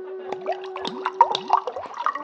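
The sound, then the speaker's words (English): A drink glugs into a glass, with bubbly gurgles rising in pitch as it fills, fairly quiet over a faint steady hum. “Care for a drink?”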